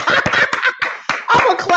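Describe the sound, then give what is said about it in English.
A quick burst of loud hand clapping, roughly eight or nine sharp, bright claps in an uneven rhythm with a brief pause midway, and no one talking. “This is, I want to clap. I don't have sound effects, but I'm a clap.”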